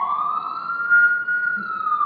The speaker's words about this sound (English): Two, there are sirens.